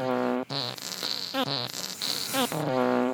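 A rapid run of loud fart noises, five or six brassy, buzzing blasts in quick succession with brief gaps, some sliding in pitch, with no talking.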